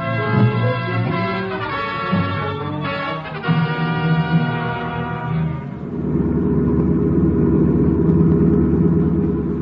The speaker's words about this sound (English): Listen. Car pulling away out in front.